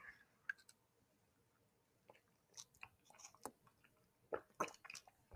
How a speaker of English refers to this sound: Sorry, I had to get a sip of water in real quick.